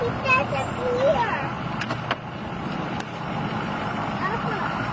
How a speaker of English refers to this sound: He's got a nice diesel truck.